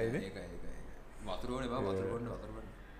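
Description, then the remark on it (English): A cat yowls in long, wavering wails that rise and fall in pitch, sounding eerily like a crying baby, loud with a low background hum. “Oh, no, that's a cat.”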